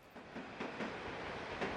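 A metro train rumbles past overhead on the metro arches at La Villette in Paris with a steady, loud roar of wheels on rails, faint rhythmic clacks from the track joints breaking through the continuous noise. No one speaks.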